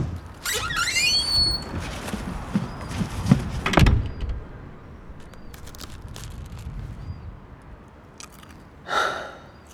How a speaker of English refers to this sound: Pull the door closed after you. Make sure the latch clicks because you never know with prowlers.